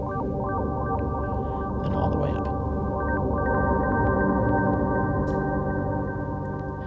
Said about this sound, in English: Just a nice, simple, but really effective reverb. Sweet.